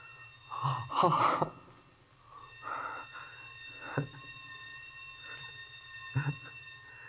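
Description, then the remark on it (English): A sprinkler alarm bell rings in a basement at 6 o'clock as the day engineer turns off one of the sprinkler alarms. It is a steady, high-pitched metallic tone held for several seconds, with a few louder noisy bursts breaking in over it. “That was the bell back in the basement. The day engineer turned off one of the sprinkler alarms.”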